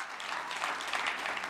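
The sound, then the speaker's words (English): An audience breaks into applause, a dense, steady wash of many hands clapping at once with no individual claps standing out, holding at an even level throughout. “come on, we can give a round of applause.”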